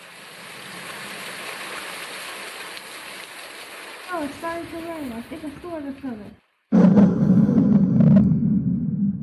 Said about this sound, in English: Let's get out of this storm